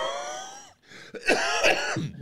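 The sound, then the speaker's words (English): A person clears their throat with a voiced, rasping rumble, then follows with a few harsh coughs in quick succession. No one speaks. “And then there's the cough medicine budget.”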